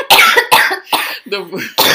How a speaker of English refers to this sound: Sorry, guys. Yeah, clear your throat, ma'am.